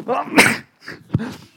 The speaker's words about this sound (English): I'm so glad that came. I was sitting there going, oh, it's going to come. Yeah. I only do one sneeze as well, so we're in the clear.